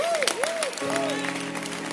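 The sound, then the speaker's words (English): A church crowd claps steadily for Bishop Doug Heward Mills as he is introduced: a dense wash of overlapping handclaps, joined by a few rising and falling tonal sounds like cheering voices or music, fairly loud throughout. “Keep clapping.”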